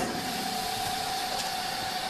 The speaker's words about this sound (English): Over to the chamber vac. To the chamber. I think everybody keeps their chamber vacuum sealer in their entry closet. I'll close the lid. It's going to start doing its thing. It takes about a minute. Here we go.